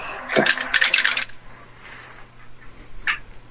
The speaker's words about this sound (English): I am a minus one wisdom, but I roll plus advantage, so that's three dice instead of two.